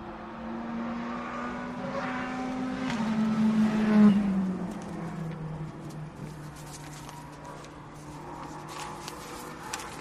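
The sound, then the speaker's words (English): Sports cars in the first practice session of a sports car championship series drone from far away, one rising to a louder whining pass around the middle before fading back into a steady distant hum of traffic on the track. “You can hear the cars in the distance.”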